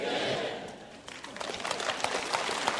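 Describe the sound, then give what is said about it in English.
An audience claps together, a dense patter of many hands that swells after a brief dip and keeps going steadily, with a broad crowd murmur underneath. “Listen, if that's the best clap you can give, let me just say to you, you have never fought with these things before.”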